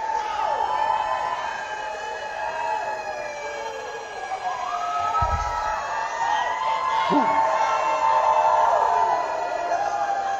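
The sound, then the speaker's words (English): A large church audience shouts and cheers together in praise of God, a sustained, loud roar, many voices rising and wavering in pitch without letting up for the whole stretch. “This is the shout.”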